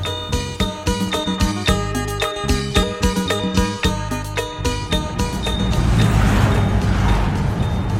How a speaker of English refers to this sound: I'm riding north in the back of a Songtao, a pickup truck with benches in the back, packed with maybe 20 people.